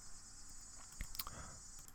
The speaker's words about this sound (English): So while I was waiting out a cicada just there, I did look it up.